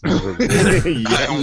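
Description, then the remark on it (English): Someone coughs hard, a few harsh, raspy bursts run together with strained, throaty vocal sounds between them. “coughed so hard.”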